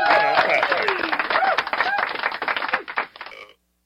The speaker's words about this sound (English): Man, we gonna clap for you.